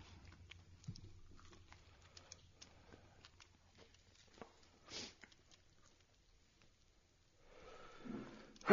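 Several seconds of quiet, scattered small clicks and soft rustling while Son of Zombie is being tasted, with a brief hissy puff partway through, then a sudden, forceful sneeze bursts out at the very end, loud and breathy, not directly into the mic.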